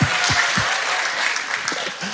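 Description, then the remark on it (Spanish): A church audience claps steadily during a sermon when the preacher invites them to applaud, a dense wash of many hands with no clear rhythm, fairly loud throughout, while a few low voices murmur underneath. “Gloria, ahí sí pueden aplaudir.”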